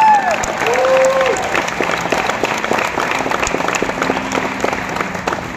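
A crowd at Bridge Church applauds steadily to welcome a guest pastor, a dense wash of many hands clapping at a fairly loud, even level, with a few brief whoops and cheers rising above it early on.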